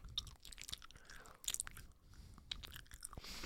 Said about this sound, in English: That sounds disgusting when you chew like that. Why do you chew like that?